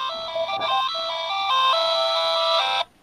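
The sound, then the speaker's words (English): Game Boy speakers play a chiptune melody from MIDI notes sent out of a computer, two voices per Game Boy, bright, buzzy square-wave notes that step between pitches in a steady line for about three seconds, then cut off abruptly, with no talking. “So that those sounds are coming from the Game Boy speakers.”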